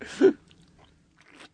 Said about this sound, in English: Oh, that was a good sip noise. I'm a Foley artist in my off time.